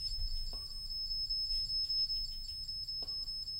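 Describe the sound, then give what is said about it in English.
A K2 EMF meter beeps in a rapid, steady run of high-pitched pulses over a low rumble, with two brief lower tones sounding partway through. “If you're the older gentleman, would you make the K2, the thing you're touching, can you make that stop beeping?”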